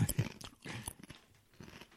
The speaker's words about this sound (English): But dude, you crunch on a chip real nice though. That was a good sound. I like it. That's good. No, it's fine. It's fine. No, they should hear it. It's part of the episode.